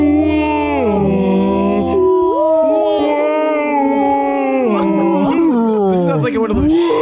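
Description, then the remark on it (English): A person imitates whale song with long, loud, wavering vocal moans that slide up and down in pitch, sustained for several seconds with brief swoops and dips near the end. “Ooh, whales. Oh, whales.”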